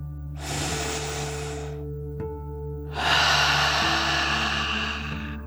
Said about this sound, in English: We'll start by taking a deep dragon breath together. You'll breathe in through your nose, filling up your lungs, and then out through your mouth, pretending you are breathing fire like a dragon. Ready? Deep breath. In and out.